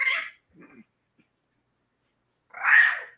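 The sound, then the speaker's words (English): A dog lets out two loud, harsh screaming cries, one at the start and one near the end, with a faint low growl in the quiet gap between them. “He's screaming like I'm hurting him.”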